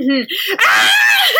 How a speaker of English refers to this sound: There's no way I could do a summary of Lolita because it would just be me screaming for 5 minutes.